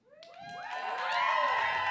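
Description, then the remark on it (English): A live audience erupts in cheering as it votes by a round of applause, with rising whoops and shouts from many voices swelling louder over two seconds, mixed with a wash of applause-like noise. “By a round of applause, do you think it's fucking a DJ?”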